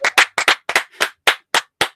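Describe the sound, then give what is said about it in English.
Hands clapping in a quick, slightly uneven rhythm, about nine sharp, bright claps over two seconds, fairly loud with no talking. “All right, that's clapping your hands, right?”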